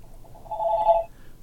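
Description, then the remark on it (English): A phone rings once in a short, warbling electronic trill, fairly clear, fading quickly with no one speaking over it. “Oh, there's your phone.”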